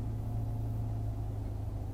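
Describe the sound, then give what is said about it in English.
A steady, droning low rumble fills the hot interior of a parked car that has not moved, like an idling engine or running fan, unchanging with no voices. “Sorry if it sounds weird. We're in her car again. Again, we haven't moved.”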